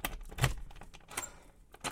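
Keys jangle and clink in a few short, bright metallic bursts over about two seconds as a key unlocks the door of room 34, English Annex, an office in the third-floor English department offices, with quiet rustling between them and no talking.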